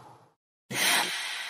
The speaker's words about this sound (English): You'll hear throughout the song as well a bunch of gasps that come in before the end of every beat.